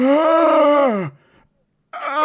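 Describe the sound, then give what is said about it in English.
A voice imitates the pained scream of a creature stabbed in the shoulder by a rapier: one loud, strained, drawn-out cry lasting about a second that sags downward in pitch at the end, followed by a brief silence and the start of another voice. “And it lets out as best of a scream it can.”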